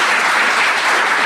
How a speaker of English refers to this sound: Welcome, Wayne Swan. We'll give him one more clap.